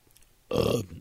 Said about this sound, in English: Wow. Excuse me. Wow. That was disgusting. You're just burping.